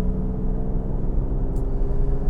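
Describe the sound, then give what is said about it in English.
A steady, low engine rumble from a diesel pickup truck just ahead, droning continuously with heavy bass and no voices. “I got a stinking diesel pickup truck in front of me.”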